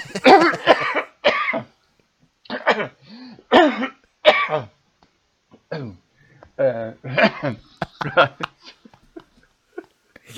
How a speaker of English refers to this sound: sorry, I just cut the cough out.